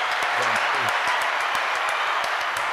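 Steady, dense applause fills the whole stretch, loud, with a brief voice calling out or cheering near the start over the clapping.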